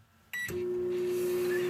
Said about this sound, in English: The circus peanut in the microwave.